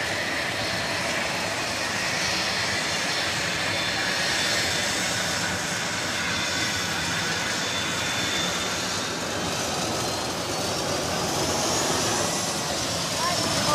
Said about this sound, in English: earlier today, the World Wrestling Federation corporate jet landed here in Charlotte, and there you saw WWF Commissioner Mick Foley awaiting the arrival of the plane.